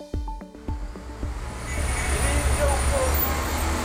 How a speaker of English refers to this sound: The sound of bustle, traffic, building work, of hundreds, thousands, millions of people going about their daily lives. But the Ethiopian capital, Addis Ababa, is more than that.